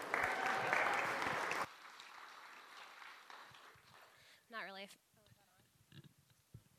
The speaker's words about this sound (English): I'm not really a fan of being clapped for, so so yes, do it again, please.